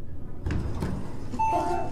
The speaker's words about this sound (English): As they say that, the elevator door opens.